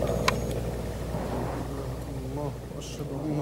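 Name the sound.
helicopter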